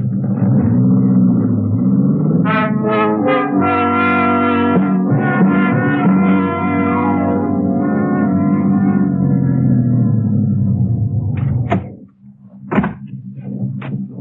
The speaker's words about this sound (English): Wait. Somebody's coming. The car. Yeah. Hey, looks like they're turning into your lane.